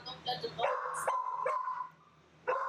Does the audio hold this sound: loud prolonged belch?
no